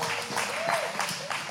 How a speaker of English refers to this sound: And he said, just by the way, you can clap. It's okay. You can clap. It's a good thing to clap for.